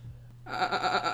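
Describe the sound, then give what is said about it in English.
A voice imitates a goat's bleat, starting abruptly after a quiet moment with a low hum, then a loud, wavering, nasal bleat that pulses several times. “That was my goat noise.”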